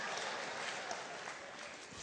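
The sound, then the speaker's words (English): An audience claps steadily for a couple of seconds, a dense, continuous wash of many hands at fairly even loudness, with no voices standing out. “It's interesting how everybody can clap for 2 years, but nothing for a lifetime.”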